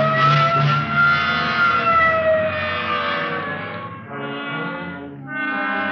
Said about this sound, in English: Okay, hit the siren. Let's move.